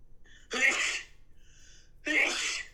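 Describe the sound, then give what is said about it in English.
Two loud, sharp sneezes about a second and a half apart, each preceded by a faint breathy intake, with no talking around them. “Bless you.”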